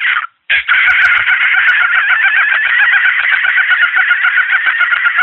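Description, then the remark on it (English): A person imitates a dolphin with a loud, sustained high-pitched squealing chatter, warbling and trilling rapidly for about five seconds after a brief opening squeak and short pause. “That's my dolphin call.”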